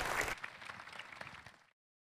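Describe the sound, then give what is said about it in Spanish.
A crowd at a church service applauds to welcome a guest preacher, with dense, overlapping claps that start loud and taper off over about a second and a half before stopping abruptly. No one speaks. “Y un fuerte aplauso para él.”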